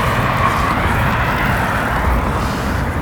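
car approaching

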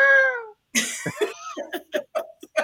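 cat meowing loudly

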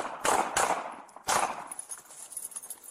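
gunshots fired

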